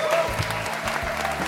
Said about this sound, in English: Ladies and gentlemen, please give a very warm round of applause for Olly Smith.